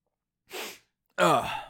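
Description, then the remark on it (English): A sharp breathy intake is followed a moment later by a single loud, forceful sneeze, with no talking around it. “Sorry, oh my god, my nose is so, it's just bothering me so much.”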